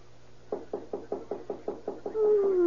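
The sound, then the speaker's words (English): A rapid, steady series of about ten firm knocks on a door at 3:30 at night, clear, followed by a brief sustained tone as the knocking ends. “There's a somebody knock on the door.”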